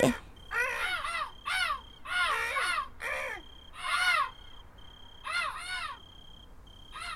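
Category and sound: bird, bird calling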